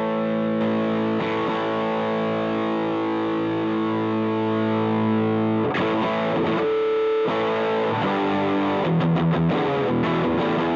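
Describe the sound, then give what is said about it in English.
A distorted electric guitar plays sustained, gritty chords that ring out, pause briefly, then return with choppier riffing, loud with no talking. “I don't use distortion a lot because I don't like it anymore.”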